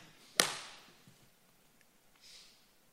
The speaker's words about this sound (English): And you just need to beat your arrow on the ground.